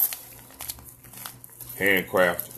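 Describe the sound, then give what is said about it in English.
A rolling paper wrapper crinkles and crackles in quick, irregular bursts of handling, followed by a couple of short voiced sounds from someone. “It's like, if you got the wrappers, why are you throwing them? Why are you throwing them away?”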